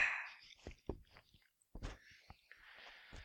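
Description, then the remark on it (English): Someone sips a drink from a glass, with a few short slurping draws, wet mouth clicks and a soft swallow, spaced irregularly with no talking. “We're going to talk about so many cool things once you're done sipping out of that glass.”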